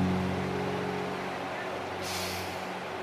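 Steady, dense rain hiss fills the whole stretch over a low droning hum, with the patter growing brighter and sharper for the final second.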